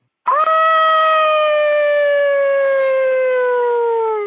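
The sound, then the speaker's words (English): A single long, loud howl, sent in by a listener as a voicemail, swoops up sharply at the start, then holds a steady, tonal note that slowly sinks in pitch for about four seconds before cutting off. No one speaks. “All right, we got a howl.”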